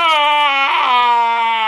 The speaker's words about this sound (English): We get introduced to what I'm going to dub the Wilhelm Wail. It's like a Wilhelm scream, but like two stormtroopers fall and they go, ah!